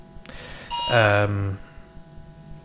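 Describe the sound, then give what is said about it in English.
A work phone rings out with a short, loud electronic tone lasting under a second. It is bright and chime-like, with rich harmonic overtones, against a quiet background. “Sorry, that was my that was my work phone going off there.”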